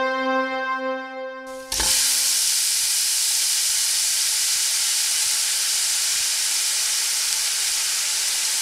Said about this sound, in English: Hot take. We should have like a sound, like a sizzle. Maybe I'll pop it in here.